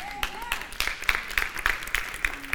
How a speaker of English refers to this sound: And I hope you're cheering and clapping and agreeing, because you're saying that about yourself, not, oh God, He needs it.